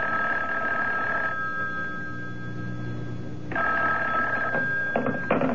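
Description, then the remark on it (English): A telephone rings in a hotel room in two long electronic bursts with a pause between them, steady and high-pitched, over a low background hum. A third ring begins and breaks off at the end. “I told you not to call me direct.”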